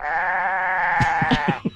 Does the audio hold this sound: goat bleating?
yes